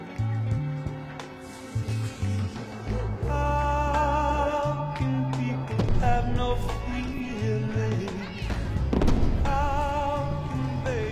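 Fireworks pop and boom repeatedly across different areas of a suburb on the Fourth of July, 1969, under a swelling orchestral score, the bursts scattered at irregular intervals and partly masked by the steady music.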